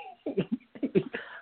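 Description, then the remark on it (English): A person imitates the heavy, wheezing breathing of the boxer Roy during a bout with Mike Tyson, likened to a train: a quick run of raspy, voiced huffs in an uneven chugging rhythm, moderately loud. “Roy was breathing like a train.”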